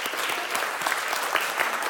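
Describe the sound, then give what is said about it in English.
A church audience in the season of Lent applauding a group of ladies steadily, dense overlapping claps at moderate loudness with no voices over them. “I want to give those ladies another round of applause.”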